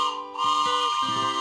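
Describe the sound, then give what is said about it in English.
The whistle of the Bible train sounds one sustained, bright, chord-like blast lasting about a second and a half, shifting pitch slightly a couple of times, loud and with no voices over it. “That's the Bible train.”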